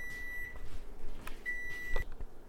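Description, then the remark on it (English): A microwave oven beeps when finished heating chicken bites: two steady, high-pitched electronic tones, each lasting about half a second with a short gap between, over a faint low rumble and no talking. “Oh, hold on, my chicken bites.”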